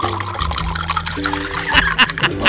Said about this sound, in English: Yeah, so you can hear him. Add 1.5 ounces of Aviation American Gin. World's highest rated gin for the world's highest rated job. He starts pouring.